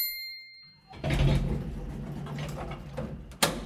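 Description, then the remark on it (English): A bright electronic chime rings out, followed by a low rumbling mechanical whir as the sliding doors of an elevator going up roll shut, ending in a sharp thud. “Doors closing, going up.”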